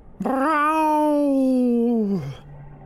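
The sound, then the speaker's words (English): A single long, drawn-out cat meow, loud, rising at the start, holding steady, then sliding down at the end, with nothing else around it. “Meow. A black shadow zipped across the floor, behind the jury box.”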